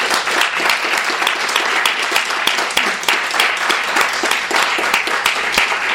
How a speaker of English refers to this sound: So please help me give a round of applause to all the readers this afternoon.